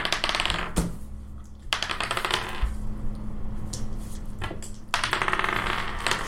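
Clear, unweighted dice clatter and rattle across a hard table in a dense, continuous stream of rapid clicks, swelling into several louder bursts, fairly loud with no voices.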